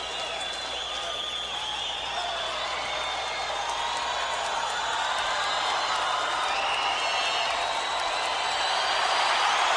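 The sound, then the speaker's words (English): A comedy club crowd applauds and cheers for comedian Dice as he does cigarette tricks and makes little noises, a steady, dense wash of clapping with scattered whoops, holding strong for about ten seconds and swelling slightly louder toward the end. “No matter what he does, the crowd lights the fuck up.”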